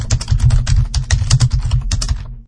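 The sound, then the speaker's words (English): Rapid, uneven keystrokes clatter on a computer keyboard as someone types questions, fairly loud, a steady burst of typing with no voices, ending abruptly. “You'll hear typing as I type my questions.”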